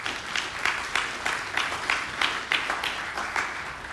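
A crowd applauds steadily for the women who had been praying for them, many hands clapping in a dense, bright wash with sharper individual claps popping through at a fairly even pace; no one speaks over it.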